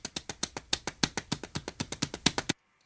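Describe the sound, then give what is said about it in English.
Duck feet slap along a wooden floor in a quick, steady patter, about twenty crisp, even taps over two and a half seconds, then they stop abruptly. No voices. “it's duck feet walking Ooh.”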